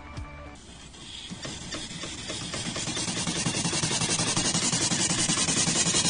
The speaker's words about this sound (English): I'm touring the room with all my water equipment in it right now. Pretty loud in here.